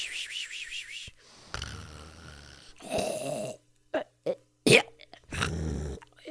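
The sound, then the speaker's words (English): A person imitates their own snoring with their voice: a few long, rumbling inhale snores broken by short snorts and puffs, with brief silences between. “That's probably more realistically how I snore.”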